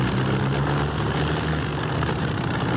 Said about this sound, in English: Is anything wrong, Kent? I'm not sure. I don't like the sound of that engine. Neither do I.